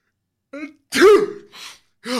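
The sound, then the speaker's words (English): A loud, theatrical sneeze voiced by a person: a short breathy lead-in, then an explosive burst with a rough vocal tone, trailing into a hissy exhale. “You let out a big sneeze.”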